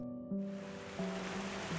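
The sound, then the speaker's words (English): A loud, steady roar of rushing river water boiling down into a narrow pass fills the short clip without pause, accompanied by a low, droning hum underneath; no voices are heard. “The high, wild roar of water smote suddenly upon Wagle's ear.”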